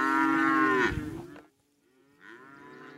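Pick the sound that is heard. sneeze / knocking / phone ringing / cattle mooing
cattle mooing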